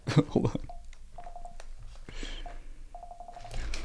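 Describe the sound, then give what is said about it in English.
Keys on a keyboard being pressed by a notebook resting on them, each press giving a short, mid-pitched electronic beep, in two quick rhythmic bursts of repeated tones, preceded by a brief burst of voice. “My notebook is pushing buttons on my keyboard. Oh, I hear it. I hear the keyboard.”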